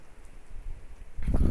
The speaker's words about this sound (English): Look, it's literally pouring down raining, like, soon as I said that. Do you guys hear that? All that just started. It's pouring down rain now. It smells so good. I love the smell of summer rain. I love it.